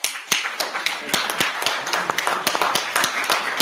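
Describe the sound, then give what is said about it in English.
A meeting audience claps steadily, many sharp hand claps overlapping in a dense, irregular patter that holds at a fairly even, moderate loudness throughout, with no voices standing out. “What are they clapping over?”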